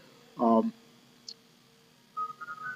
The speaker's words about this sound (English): You have to excuse this phone because these people, they couldn't find their ass with two hands on a road map here, and it keeps going off.